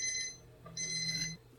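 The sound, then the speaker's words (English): A Little Miss Molly alarm clock dings in two bright, sustained bursts separated by a brief pause, clear with no voices around it. “3 hours later, the little Miss Molly alarm dinged again.”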